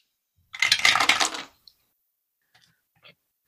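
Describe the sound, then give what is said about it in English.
Dice clatter and rattle across a hard tabletop for about a second, followed by a few faint, sparse clicks as they settle. No voices, just the crisp tumbling. The dice are rolled for a search check in a game. “Do you have, you also want to roll search too?”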